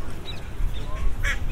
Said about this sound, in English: Let's hear lots of ducks, and they're all bathing in the water and chatting away. Oh, white duck shaking its feathers and then just hopping out of the water.